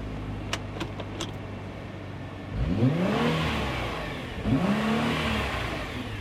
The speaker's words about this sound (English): So it won't let me rev more than 4,500 right now.